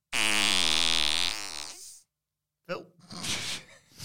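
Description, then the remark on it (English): A loud, drawn-out electronic fart sound effect with a wobbling, buzzy pitch lasts about two seconds, then stops; after a short pause people start talking and laughing. “Like those old kids' toys that have the, like, fart, different fart sounds.”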